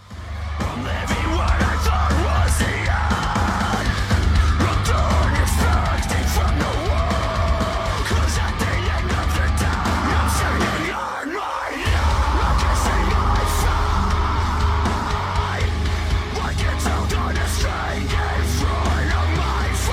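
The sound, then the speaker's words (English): Loud, dense heavy metal plays throughout, with harsh screamed vocals riding over pounding low-end guitars and drums, briefly dropping out for a beat near the middle before crashing back in. “No, that's heavier than …”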